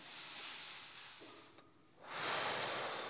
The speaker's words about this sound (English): Close your eyes, just a posture of surrender. Take a deep breath.